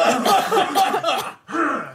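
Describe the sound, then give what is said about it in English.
A small group coughs at once on a count of three in their recording office in downtown Halifax, a dense overlapping burst of hacking and throat-clearing, a brief pause, then another round of coughs before it trails off. “Let's all cough. All on three.”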